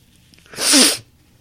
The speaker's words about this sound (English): sorry, you guys, I got to blow my nose real quick. I would edit this out, but, you know, whatever.